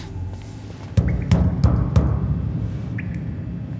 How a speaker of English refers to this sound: Should we knock? No, let's ring the bell. There is no bell. It was a joke. Yeah, knock.